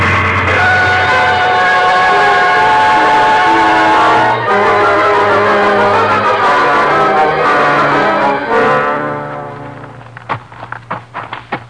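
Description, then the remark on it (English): A loud train engine drones and groans steadily as it strains up a hill, its rich harmonic roar shifting pitch twice as it labors, then fades under a few sharp tapping clicks at the end. “Now there's the engine, Jace. Sure is a straining up that hill.”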